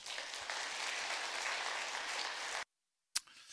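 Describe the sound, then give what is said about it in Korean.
A church audience claps steadily in a dense, sustained burst of applause welcoming a guest speaker, a missionary, at a worship service; the applause cuts off abruptly, followed by a brief silence and a sharp click before quiet background noise returns. “우리 늘 하던 대로 우리 게스트 스피커가 오시면 먼저 하나님께 박수의 영광을, 그 다음에 우리 선교사님 환영하는 박수로 우리 모시도록 하겠습니다.”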